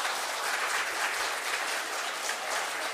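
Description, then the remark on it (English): A crowd applauding steadily to thank a group of boys and girls after their performance, a dense, continuous patter of many hands clapping at an even level throughout, with no voices rising above it. “Everybody give them a wee clap just to say thank you.”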